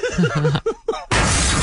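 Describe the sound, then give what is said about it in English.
A few short vocal exclamations, then a loud, harsh crash of a windshield being smashed that bursts in suddenly and keeps crunching and hissing until the end. “Oh, that is your windshield.”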